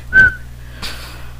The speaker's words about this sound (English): Sorry, can't whistle that well.